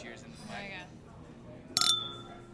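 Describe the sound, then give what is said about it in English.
A single bright clink of champagne glasses touching in a toast rings out clearly and fades with a short, high shimmer, following a moment of quiet voices. “The news is that we are drinking a little bit of champagne.”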